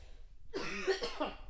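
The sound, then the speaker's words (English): A single harsh cough from a person who is sick bursts out after a brief quiet moment, with a rough, throaty rasp trailing into a second smaller hack. No one speaks. “So ready for this fucking cough to go away.”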